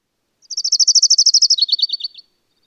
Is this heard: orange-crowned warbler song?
yes